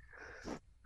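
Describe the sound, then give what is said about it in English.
A single sharp sneeze bursts out, preceded by a brief wheezy intake of breath, then quiet follows. “Bless you.”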